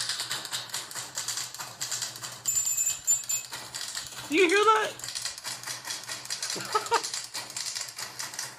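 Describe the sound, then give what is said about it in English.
Rapid, dense typewriter clacking and dings played as rhythmic percussion music by a typewriter orchestra, steady throughout, with a brief voice speaking and a short vocal swoop partway through. “this is like the typewriter version of it.”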